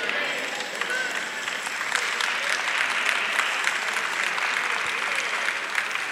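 An audience claps together in a dense, steady patter of many hands, a continuous bright wash of applause that holds at a moderate level throughout.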